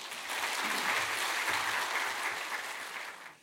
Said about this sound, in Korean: 우리 나오실 때 박수로 환영하겠습니다.